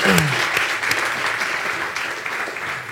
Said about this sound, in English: Guys, clap for